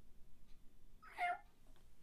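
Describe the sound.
A person mimics a cat with one short, soft meow, a brief rising-and-falling mew heard faintly, with no talking around it.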